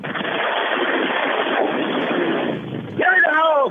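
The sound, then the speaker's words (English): A steady, noisy engine rumble of a caller's motorcycle roars continuously for a few seconds, muffled as if over a phone line, before a voice starts speaking over it at the end. “I think my man was on a motorcycle. I believe so. I feel the rumble.”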